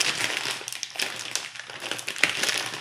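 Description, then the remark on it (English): A kettle corn popcorn bag crinkles into a microphone, continuously in irregular bursts of crisp, bright rustling, fairly loud, with no voices. “See if I can make more package noises into the mic.”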